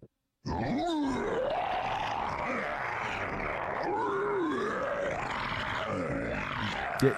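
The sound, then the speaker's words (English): A person imitates a monster roar with a long, harsh, gravelly growl from the throat, rising and falling in pitch over several seconds, loud, after a brief silence. “As you can tell, very human. I don't know how that did it on the throat.”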